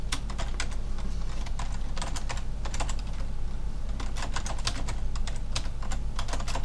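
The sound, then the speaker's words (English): Steady, rapid typing on a computer keyboard as someone types up social media posts, with irregular bursts of crisp key clicks over a low constant hum and no voices. “But now all they're hearing is like clicking noises.”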